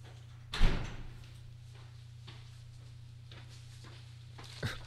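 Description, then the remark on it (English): A door bangs shut sharply near the start as a FedEx parcel left at the door is collected, followed by quiet hum and a few faint shuffles, then a second softer door knock or thud near the end. “No signature required. It just was left on the door.”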